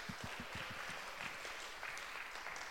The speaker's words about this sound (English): Great, thanks very much, guys. Can we give them a little round of applause?